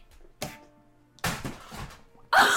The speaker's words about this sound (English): knocked over one of his lights. That's what happens when you show off.